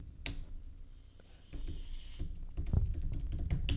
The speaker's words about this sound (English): You type so loud. I know I do. It's like you want everybody to hear that you're typing. You're like, bah, bah, bah, bah. Just slamming it.